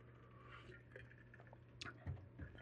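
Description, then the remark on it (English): Quiet sounds of someone drinking water: faint liquid sloshing and a couple of soft swallows near the end, over a low steady hum with no talking. “Let's take a drink of water here.”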